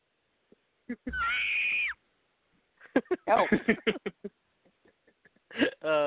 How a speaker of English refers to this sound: I feel like Nikki Cross is going to come out any moment with those screams.